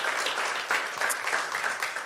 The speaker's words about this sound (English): So let's just give the deacons a hand of applause because they are so vital to our ministry.